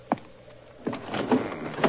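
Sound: window being closed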